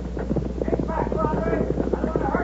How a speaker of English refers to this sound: You better worry about stopping those horses before you get hurt